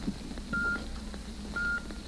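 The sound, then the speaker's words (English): Two steady electronic time-signal beeps originating from the observatory of the Elgin Watch Company, each a pure mid-high tone lasting about a quarter second, spaced roughly one second apart over a faint background hiss. “The electrical impulse that produced that steady beep, beep, beep had its origin in the famed observatory of the Elgin Watch Company,”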